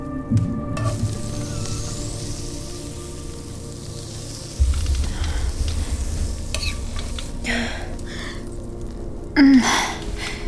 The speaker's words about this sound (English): Are you cooking something on the fireplace? Streaky bacon. Found some downstairs. I was hoping the smell might wake you up.